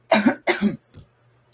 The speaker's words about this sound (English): People are definitely going to know who it is now. The cough. You okay?